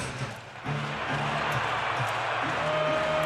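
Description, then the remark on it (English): A large arena crowd at a basketball game reacts with displeasure to a foul called on number 42, Maxi Kleba, after he and Gobert fell: a sustained, dense roar of voices that swells slightly after the first half second and holds steady throughout, with low murmuring tones running beneath. “Crowd didn't like it.”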